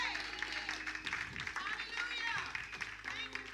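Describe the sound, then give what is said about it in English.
An audience claps steadily in a dense, continuous patter, with voices calling out and cheering over the applause throughout. “Boy, y'all clap like y'all didn't believe that.”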